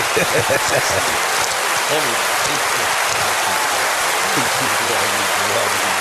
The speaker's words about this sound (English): Some applause here.